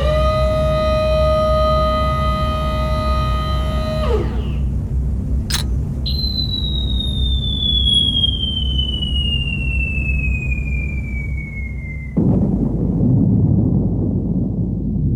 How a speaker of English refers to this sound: Seconds later, a huge explosion lit the morning sky as Little Boy detonated 1,900 feet above the city, directly over a parade field where members of the Japanese Second Army were doing their morning calisthenics.